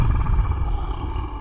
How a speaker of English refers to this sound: A couple of seconds pass before a small creature wearing a red hat jumps out. It growls at them while revealing its sharp teeth.